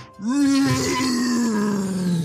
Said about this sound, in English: You hear a massive roar.